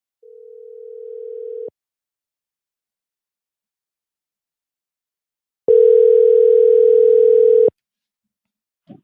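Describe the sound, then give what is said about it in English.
An outgoing phone call being placed: a steady electronic ringing tone sounds for under two seconds, then a pause of silence, then a second, louder and buzzier ring of about two seconds. “Let me make the call and see if she's available.”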